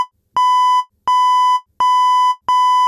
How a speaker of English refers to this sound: Now, for the past week, we've heard this beep, beep, beep through what, the night.